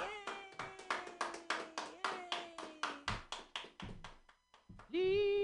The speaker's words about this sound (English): Clap your hands together for Ian Langlands. Yay! Yay!